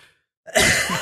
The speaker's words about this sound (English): That was so funny. She coughed.